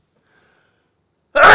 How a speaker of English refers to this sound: I felt the building up and building up and thinking, finish this section before you sneeze. But no. I had to race off to the toilet before.